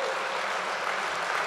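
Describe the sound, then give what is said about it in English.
A crowd applauds steadily, a dense, continuous wash of many hands clapping at once, fairly loud and filling the whole moment without any voices. “Yeah, yes, applaud me being wrong, please.”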